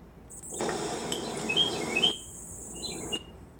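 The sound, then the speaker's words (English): Birds chirp outdoors, with short high tweets over a steady wash of background noise. The calls are moderately faint and scattered, with no one speaking. “These were the live birds outside chirping.”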